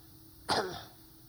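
A single sharp cough bursts out, brief, trailing off quickly into low background hiss with no one speaking.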